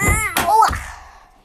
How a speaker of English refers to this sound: Shut the door again.